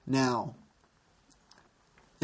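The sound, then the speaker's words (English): One short, loud, voiced cough with a falling, throaty tone, followed by near silence broken only by a few faint clicks and a soft breath at the end. “Now, I'm coughing again, excuse me.”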